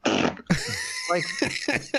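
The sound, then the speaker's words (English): A loud fart blares out, starting with a rough buzzy blast and then sputtering on in wavering, squeaky bursts for a couple of seconds. “No, I'm calling bullshit on that fart. That's way too fucking perfect of a fart.”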